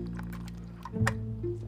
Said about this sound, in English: hold on, let me sip my mimosa.